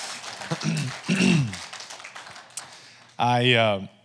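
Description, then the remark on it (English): A church audience at Renew Life claps in a dense, steady patter for a few seconds to welcome first-time visitors, with voices calling out over it and a loud sustained shout near the end as the clapping fades. “Don't give them a golf clap. Let's welcome them here to church.”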